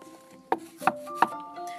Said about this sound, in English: A knock at the dressing room door cut Monty's sentence short.